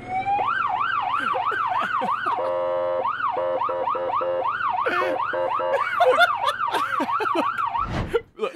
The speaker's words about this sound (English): He's just going to show us how authentic this vehicle is. Fritz, just show us the siren.